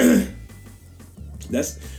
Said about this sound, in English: That's the cough sound that Alan Watts had before he died.